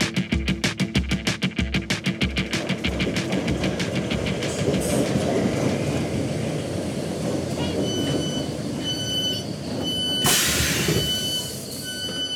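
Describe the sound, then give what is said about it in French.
A London Underground metro train rumbles along with a fast rhythmic clatter of wheels over rail joints at first, settling into a steady loud roar, with a brief high metallic squeal near the end. “Pour ça, il va falloir prendre le métro et se rendre à Brockley.”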